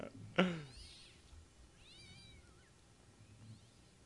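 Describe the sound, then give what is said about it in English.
A single loud, drawn-out cat meow rings out near the start, followed by softer chirping yowls, a canned alley cat sound effect. “Sweet canned alley cat sound effect.”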